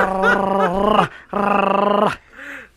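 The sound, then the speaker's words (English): Someone mimics a dog: two loud, drawn-out growling barks in quick succession, then a brief softer yelp, with no talking. “He barked just like a dog, dude.”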